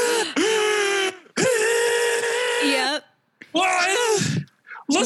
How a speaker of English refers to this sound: Okay, just calm. Here, let's work through your breathing exercises, okay?